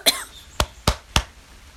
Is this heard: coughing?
yes